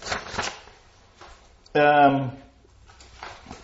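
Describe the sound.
Crinkly rustling of pieces of paper being picked up off the floor, in short bursts at the start and again near the end, with a brief voiced sound in between.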